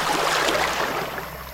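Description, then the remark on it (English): Water splashes and sloshes steadily as a boat comes in to shore, a broad wash of spray that eases slightly toward the end, with no voices. “I just like the splashes.”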